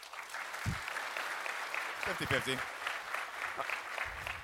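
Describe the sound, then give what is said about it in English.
A live audience applauds steadily, a dense crowd-wide clatter of clapping that fills the whole moment, while a voice briefly speaks over it partway through. “Do you, a round of applause if you want something to yell at us.”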